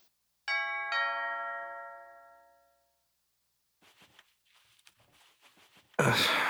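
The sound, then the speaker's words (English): A clear two-tone doorbell chime rings once, loud, its notes ringing out and fading over a couple of seconds, followed by soft rustling movement and then a sudden burst of noise. “I thought Ding Dong Ditch went out of style in the 90s.”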